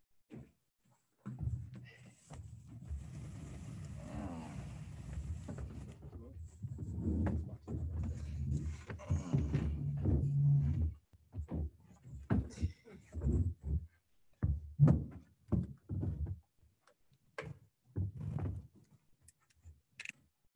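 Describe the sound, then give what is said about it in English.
A chair scrapes and drags across the floor for several seconds as another chair is pulled up, then a series of short knocks and bumps as a chair is pushed out and shifted into place, with some voices in the background. “It'll get him up another chair. Yeah, let's push his out a little bit.”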